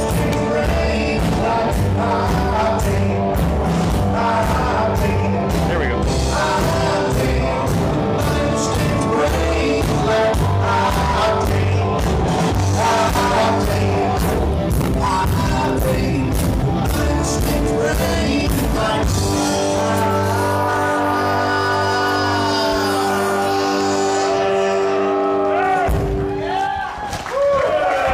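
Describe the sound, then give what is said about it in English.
A band plays live and loud, with steady pounding drums under dense, sustained guitar and vocal tones, before the music cuts off near the end and a brief crowd noise follows. “And the following are just some snippets of their live performance.”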